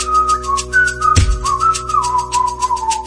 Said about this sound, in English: Is that you whistling?